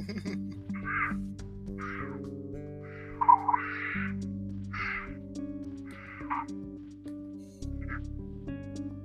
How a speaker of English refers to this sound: And I actually have on the side here, I actually have a cougar sound just to kind of compare.